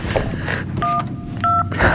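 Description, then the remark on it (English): Two short electronic keypad beeps from a phone dialing 911 in a bedroom, each a steady dual-pitched tone lasting a fraction of a second, with a brief pause between them over a low background rumble. “We go into her bedroom and lock the door, and we call 911.”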